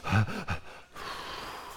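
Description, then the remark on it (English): An audible deep breath taken as a breathing exercise: a quick, gasping intake followed by a long, steady, airy exhale, with no talking. “You might be someone who engages in breathing exercises.”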